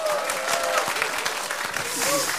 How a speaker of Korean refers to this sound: 여러분들과 함께 1주년을 맞이한 걸 기쁘게 생각하면서 힘찬 박수 부탁드리겠습니다.